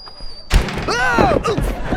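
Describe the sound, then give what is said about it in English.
A door swings back with a loud slam and hits a man, who gives a startled cry and falls over, followed by shuffling as the contents of a box spill onto the sidewalk. “The door swings back and hits George, who falls over, sending the contents of the box spilling onto the sidewalk.”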